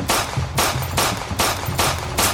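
A rapid string of about six loud, sharp gunshots fired at an old woman in a steady rhythm, each blast harsh, with no voices in between.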